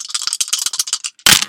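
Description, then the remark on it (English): Dice rattle in a cup with a quick run of sharp, bright clicks over about a second, then a brief pause and a louder clattering burst as they tumble out. They are shaken and rolled for a game, and the result, 73, is checked against a table behind a screen. “So, okay, what we're going to do is, as I say, I want you to roll the dice, and then I'll consult this table behind my screen.”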